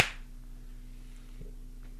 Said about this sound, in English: Reclap, declap, right. Upclap, downclap, all around town clap. One, two, three.